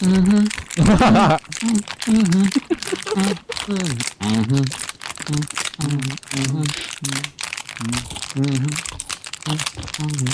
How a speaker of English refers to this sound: Yeah, crunching on a bottle? That's skill.